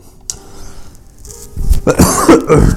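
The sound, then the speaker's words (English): A person coughs, a quiet catch at first and then a harsh burst of several rough, throaty coughs in quick succession near the end. “That's another cough for you guys there.”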